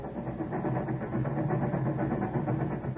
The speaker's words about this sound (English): Ben, do you hear what the train wheels are saying? They're saying Chicago.